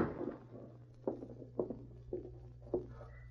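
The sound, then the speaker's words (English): A few soft, light taps on the door of a small cabin on the outskirts of town, about four distinct taps spaced roughly half a second apart, over a low steady hum, with no one speaking. “She stopped suddenly as she heard a light tap on the door.”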